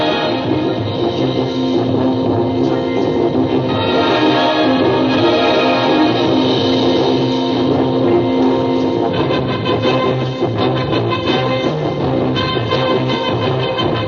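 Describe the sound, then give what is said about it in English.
A marching band plays loudly and steadily while marching, with deep sousaphones pumping out a low bass line beneath brass and a driving drum beat at about 150 a minute, all at a full, unbroken volume. “Listen to those sousaphones, man.”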